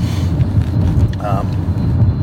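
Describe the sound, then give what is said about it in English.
A car engine runs with a steady, loud low rumble throughout, and a brief higher tonal sound rises over it about halfway through. “The car does sound better.”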